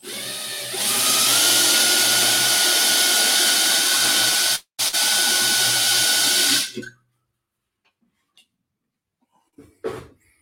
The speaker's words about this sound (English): I'm going to take my drill and drill bit. Right. And drill this hole out here. I'm going to pull it off here. Yep. So we're just going to center it on that hole there and drill this out.